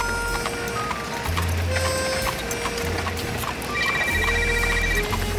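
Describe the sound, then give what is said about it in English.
A cell phone rings with a repeating electronic melody of steady tones and quick high beeps, playing over a constant low hum with no one talking. “Your cell phone's ringing.”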